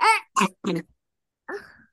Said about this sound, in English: that one seems fake. That cough was for attention.